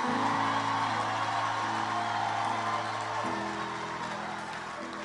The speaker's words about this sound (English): You can clap better than that one.